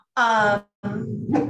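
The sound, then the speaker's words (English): A dog named Hilbert, one of the speaker's dogs behind the speaker, whines in two drawn-out bursts: first a tense, high, tonal cry, then after a short pause a lower, groaning moan that lifts slightly at the end. “My dogs are behind me.”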